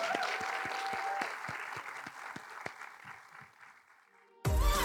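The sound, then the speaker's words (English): A crowd claps in a steady round of applause for the girls, dense and sustained, thinning out toward the end before a sudden louder burst of noise cuts in. “Can I get a massive, huge round of applause for the girls?”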